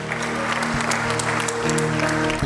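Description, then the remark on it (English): An audience claps in a dense, steady round of applause for the youth cast of the day's performance as they come up, staying loud throughout, with a low sustained tone droning faintly underneath. “The cast, everybody, round of applause.”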